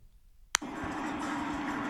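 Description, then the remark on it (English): A sharp click, then a new truck's engine starts and settles into a steady rumbling drone with a broad hiss of road or cabin noise layered on top. The truck has cloth rather than leather seats. “New truck, got cloth instead of leather.”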